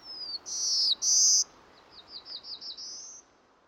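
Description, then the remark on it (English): A bird sings alone: a thin high whistle, two long bright buzzy notes, then a quick series of short rising chirps ending in a sustained whistle, clear against faint background hiss. “one where the male has two different kinds of songs”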